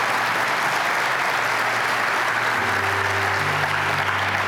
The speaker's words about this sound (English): I'm going to say, come on, let's clap like we mean it for that. Amen.